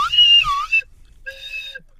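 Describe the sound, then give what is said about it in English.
A slide whistle plays two loud tones: the first wavers and glides downward in pitch, and after a short pause the second holds a steady, shrill note. “Oh, I got a slide whistle.”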